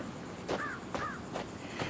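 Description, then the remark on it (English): A crow caws twice in quick succession, harsh, while crows are being fed, against a steady background hiss with a few soft thumps between the calls. “Tommy, stop feeding them crows.”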